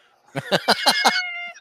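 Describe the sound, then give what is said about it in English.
A cat lets out a rapid string of five short, agitated meows, then trails off into a thinner drawn-out tone. It is fairly loud, with no talking. “This cat represents all cats that have lost jobs to Frank Welker. He's clearly pissed.”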